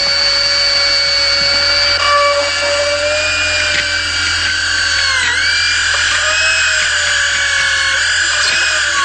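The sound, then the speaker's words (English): A dental drill drilling into a healthy tooth whirs continuously in a loud, high-pitched whine, its pitch dipping and wavering briefly now and then. It runs alone for the whole stretch, with no voices. “So, I'll just drill into a healthy tooth until I reach the pulse.”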